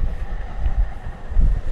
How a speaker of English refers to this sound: There goes a train. Bye, train.